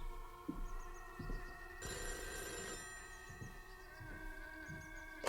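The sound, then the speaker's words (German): A telephone bell rings loudly, with one bright, jangling burst of ringing in the middle over a steady electronic tone and some soft background knocking. No one speaks. “Moment, ich gehe mal ans Telefon.”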